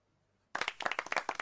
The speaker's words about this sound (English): I mean, that's not a jingle. It's a round of applause.